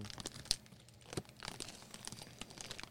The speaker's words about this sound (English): You want to grab like a handful of those instead of rustling in the bag every 2 seconds?